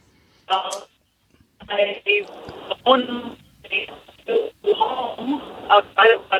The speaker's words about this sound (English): We're only getting about every fifth syllable. And I am just not smart enough to decode just semi-syllabic conversation.